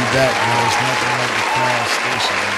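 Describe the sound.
Steady, dense applause from an audience welcoming someone back in the building fills the whole clip, a continuous wash of clapping while a man's voice speaks loudly over it in short bursts.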